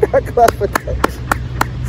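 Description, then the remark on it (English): A series of sharp hand claps, roughly evenly spaced at a steady rhythm, about seven in two seconds, with voices talking and laughing underneath at the start. “Gotta clap for that.”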